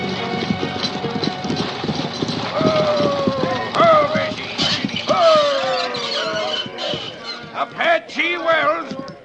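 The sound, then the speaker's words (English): Horses' hooves clip-clop along at a steady pace, mixed with high squeaking, whining tones that rise and fall, all fairly loud throughout. “Folks, we gotta change horses.”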